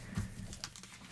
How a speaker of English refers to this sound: This is paper that I'm turning. I hear it.